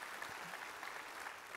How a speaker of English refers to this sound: Give a hand clap for the people that serve our next generation. Y'all are awesome.